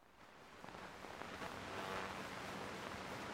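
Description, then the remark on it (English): A steady wash of static hiss from an old 1935 recording of an ivory-billed woodpecker, holding evenly throughout with a slight swell midway and no voices. “I hear static.”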